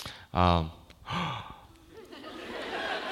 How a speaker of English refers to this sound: There was like one like gasp.